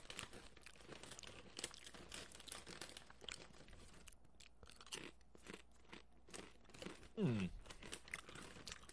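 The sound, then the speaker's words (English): Crunchy chewing of crisp sesame oil and salt potato chips, a steady run of sharp crackling bites and mouth noises with a brief vocal murmur near the end. “He's chewing with a quizzical look on his face, which I find interesting.”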